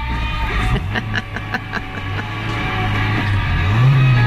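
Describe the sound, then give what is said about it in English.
A just-started car engine idles with a steady low rumble and faint rhythmic ticking, then revs up near the end, its pitch climbing as it roars louder. “What do you do when you turn on the car? Well, you rev it up. You gotta rev that engine.”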